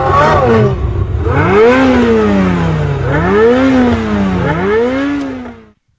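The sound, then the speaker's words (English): A Supra sports car, the actual car from a film scene later sold at auction, revs hard and accelerates, its engine pitch climbing in three surging waves before the sound cuts off. It is loud, with no voices. “So this is the actual car from that scene.”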